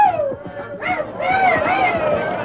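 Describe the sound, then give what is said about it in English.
A crowd cheers and yells loudly and continuously, with high, drawn-out whoops rising above a dense, rumbling mass of voices. “The crowd cheered wildly.”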